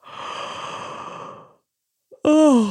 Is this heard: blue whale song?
no